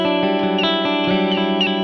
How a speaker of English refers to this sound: Can you hear this? Oh. It might be too soft. It sounds like you're doing like a hammer-on with just the pick. I am. It's like a baby bird.